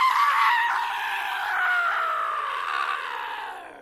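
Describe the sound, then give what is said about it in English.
Loud, shrill screaming in fright, a sustained high-pitched cry that holds for several seconds and slowly slides downward in pitch before fading slightly at the end. “But most of them screamed.”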